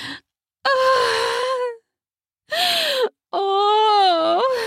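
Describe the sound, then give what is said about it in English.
A loud voice lets out three breathy moans and gasps in anticipation during sex, with short pauses between them, each rising and falling in pitch, and no words are spoken. “I gasp in anticipation.”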